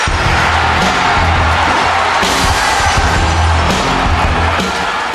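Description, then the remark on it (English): A large arena crowd roars and cheers loudly and continuously as Steve Austin comes out after his glass-break entrance, a dense wall of noise with surges of excitement and scattered whoops throughout. “we have Steve Austin to a loud ass crowd reaction.”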